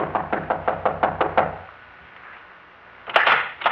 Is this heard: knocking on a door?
yes